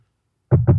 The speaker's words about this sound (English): Yeah, I knock on my wood on my bed every night so that I don't die.